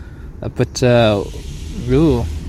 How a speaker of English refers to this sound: Someone needs their thingy belt fixed on their car. Timing belt? Whatever it is. I think it's a timing belt. Is that right? Well, there's something belt. Fan belt. Car belt. The car belt needs fixing. So it just made a squealy noise.